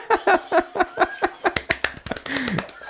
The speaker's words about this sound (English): I gotta turn it down. You're clapping, spiking the mic.